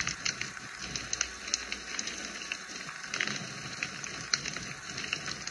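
A fireplace fire crackles steadily, with frequent sharp pops and snaps scattered irregularly over a soft, continuous hiss of burning, and no voices present.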